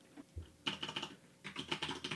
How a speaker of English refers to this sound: You guys like my mechanical keyboard? I like the way you type.